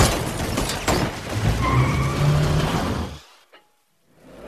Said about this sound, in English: Car. Car splash.